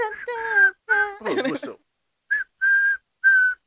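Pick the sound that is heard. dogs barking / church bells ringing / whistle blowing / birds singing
whistle blowing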